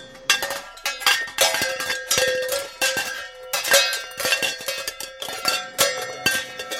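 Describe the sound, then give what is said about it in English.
Metal kitchen pans are banged like drums in a quick, busy rhythm. The loud clanging strikes ring with bright, bell-like overtones, and no voices are heard. “Oh, this is our pan section.”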